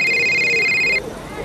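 A telephone rings once, a bright, high electronic trill with a fluttering warble that lasts about a second and then cuts off, leaving only a faint low murmur.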